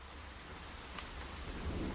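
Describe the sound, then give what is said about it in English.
Heavy rain pours down in a steady, dense hiss, with a low rolling rumble of thunder underneath throughout. No voices are present. “The only sound is that of the hard rain.”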